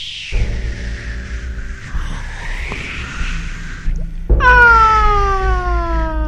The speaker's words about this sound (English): Well, it's the springs on these microphone stands. It's kind of crazy.